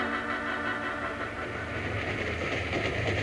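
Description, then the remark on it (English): A train rumbles steadily, its low mechanical drone and clattering rail noise filling the scene continuously without any voices, as it starts to slow down while beginning to climb Broken Wheel Grade. “He's starting to slow down. We're beginning to climb up Broken Wheel Grade, Bill.”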